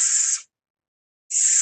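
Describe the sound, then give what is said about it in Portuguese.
A voice makes a sharp, sustained hissing S sound, demonstrating the sound of the Greek letter sigma. It pauses in near silence for about a second, then starts another loud hiss that runs to the end. “O sigma é transliterado com a nossa letra S, e ele tem o som de S no português, como na palavra sapo, ou na palavra saúde.”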